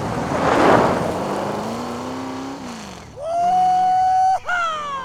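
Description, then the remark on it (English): A pickup truck roars off at speed, opening with a rough burst of noise, then its engine revs loudly and climbs in pitch through a couple of gear changes, staying prominent. “Soon, Craig joined her, and they took off like a scalded dog.”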